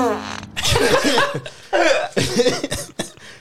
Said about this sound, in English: So now we're going to try an 8-foot long piece of pipe and see if you can hear my fart.